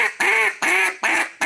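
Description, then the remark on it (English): A duck call blown in a quick, even series of about four loud, nasal quacks, each one clear, with no talking underneath. “So start slow, build up, add two quacks to the end.”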